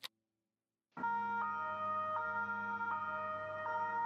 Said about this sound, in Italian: Partì l'effetto sonoro della sirena della polizia.